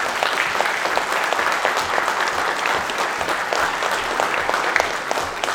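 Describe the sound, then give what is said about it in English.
A church audience applauds steadily for several seconds to honor a woman who works with the church's young people, a dense wash of many clapping hands at an even, fairly loud level with no voices over it. “I can tell she's applauded today.”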